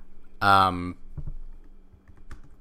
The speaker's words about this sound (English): Sorry for my typing. I know this is the worst podcasting thing. I hate when people type in podcasts.